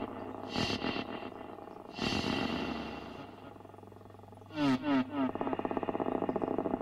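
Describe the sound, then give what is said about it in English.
Someone snores in a low, rasping rumble, with breaths swelling at uneven intervals over a steady droning hum, ending in a burst of quick, louder fluttering snorts. “Someone's snoring. Like a helicopter in the background.”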